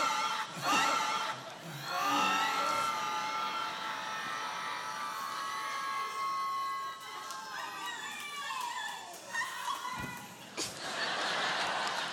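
A family cheers and shouts excitedly in a hospital waiting room on hearing the announcement of a baby girl, a loud, sustained burst of overlapping voices and high-pitched squeals, with a brief dip before the commotion picks up again.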